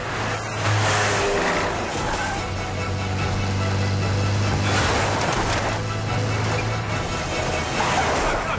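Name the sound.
car engine revving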